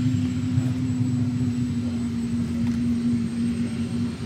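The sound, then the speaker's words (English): Engine number two of an aircraft burning jet fuel starts up, a loud growl with a deep, steady rumble and a droning hum, a thin high whine riding on top, running continuously with no voices. “There's that growl. Aircraft burns jet fuel just like an airliner.”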